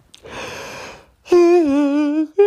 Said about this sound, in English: Second yawn in a row. Uh-oh.